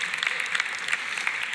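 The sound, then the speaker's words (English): Scattered applause from an audience clapping for a marriage of over 30 years, a steady patter of many overlapping claps held at a moderate level for the whole moment, with no voices over it. “Somebody should clap. One person's gonna clap for 30 years.”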